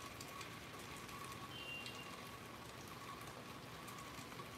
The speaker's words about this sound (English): Yeah, it's raining out here.